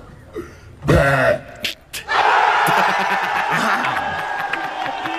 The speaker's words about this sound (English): but the clip, as you'll hear, is quite bizarre to hear someone burp and then get such a reaction from the crowd.